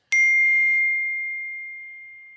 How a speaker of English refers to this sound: The default text tone is now this.